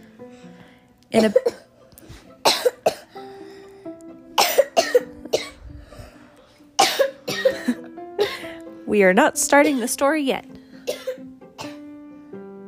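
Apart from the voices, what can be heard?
person coughing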